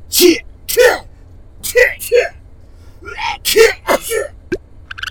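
A rapid string of about half a dozen loud sneezes, each a sharp voiced burst with a breathy hiss, coming in quick uneven succession with no talking between them.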